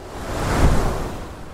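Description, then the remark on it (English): A steady wash of ocean waves, swelling gently to a soft peak midway before easing back into a continuous hiss of surf. No voices, just the broad, even rush of water. “So is it just these waves on top of the water that's moving?”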